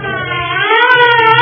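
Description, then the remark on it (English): Loud sirens wail, their rising, sustained tones layered over one another with a low rumbling hum underneath, filling the whole stretch without any talking. “At the sound of the sirens, Marv drew the boat to it.”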